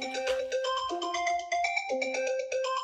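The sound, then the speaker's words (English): A phone ringtone plays a bright electronic melody of stepping tones at a steady, fairly loud level, with no talking over it. “I was so rudely interrupted by that phone call.”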